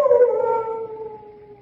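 A large dog, one of many large dogs kept at the Chateau d'Arzay, lets out a single sustained howl, a steady tonal wail that slowly drifts downward in pitch and fades slightly over nearly two seconds, with no voices present.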